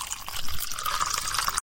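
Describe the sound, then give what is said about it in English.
Water pours steadily into a glass in a kitchen around 2 o'clock in the morning for a second and a half, the splashing pitch rising slightly as it fills, clear, then stopping abruptly. “Around 2 o'clock in the morning, I felt a little thirsty and went to the kitchen to drink some water.”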